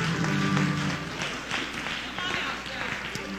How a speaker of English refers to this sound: If you truly believe it, give God a hand and clap of praise right now.